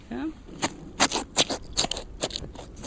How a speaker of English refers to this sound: Yeah. It's opening up the rib cage now. That's what you can hear. Yeah. Now it's cutting right down.